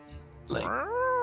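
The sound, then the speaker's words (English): A human voice mimics a cat's meow, a single drawn-out, rising-then-sustained yowl that swells in loudness and holds to the end, with no other sounds. “meowing”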